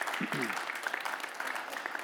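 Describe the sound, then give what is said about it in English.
A church audience meeting in a theater breaks into steady applause, a dense crackle of many hands clapping that fills the whole two seconds, with a brief voice fragment at the start. The clapping is for the church's restorative efforts around the city of Lincoln and its surrounding communities. “We should clap for that.”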